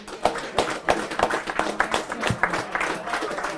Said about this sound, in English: And we're going to talk about the 1976 Senior Championship. So give him a big round of applause, please.